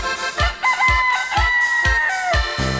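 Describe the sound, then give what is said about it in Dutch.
A rooster named Heini crows in long, drawn-out calls over a steady, thumping drum beat and bright music, the crow bending downward near the end. “Ja, dat is Heini, onze haan.”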